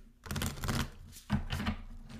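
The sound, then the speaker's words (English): Two quick bursts of cards being shuffled, a rapid papery riffling flutter each time, fairly loud, with a brief pause between them and no talking. “Quick shuffle.”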